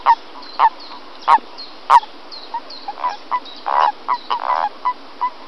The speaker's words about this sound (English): Okay, and the next one is a toad. So here's what real toads sound like.